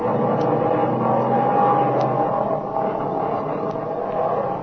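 A biplane's propeller engine, now running smoothly after a spark plug with cracked porcelain was found, drones steadily and evenly. It is a dense, continuous rumble with a faint ticking texture that holds at a constant loud level throughout, with no voices.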